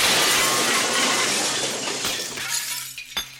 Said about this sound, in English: And exploded, shards of glass flying everywhere.